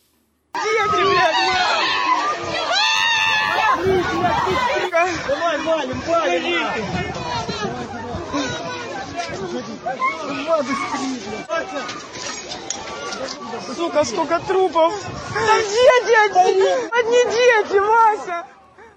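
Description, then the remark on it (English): A crowd of women, children, men and elderly people at a jam-packed train station in Kramatorsk, in the eastern Donbas region, screaming and shouting in panic as they scramble for cover after a short-range ballistic missile strike; a dense, chaotic, loud mix of many voices with frantic cries rising and falling throughout. “Those horrifying screams, the haunting scramble for cover after Russia fired what is believed to have been a short-range ballistic missile directly on this crowd of women, children, men, and the elderly.”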